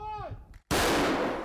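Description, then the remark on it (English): A 1970s-era self-propelled artillery gun of a 93rd Brigade artillery unit fires once: a sudden, loud, heavy boom breaks a brief silence and rumbles on as it slowly fades. Just before, a short tonal sound glides downward in pitch. “Their self-propelled artillery is also from the 1970s.”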